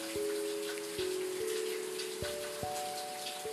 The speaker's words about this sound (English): I'm sitting out on my balcony in the rain.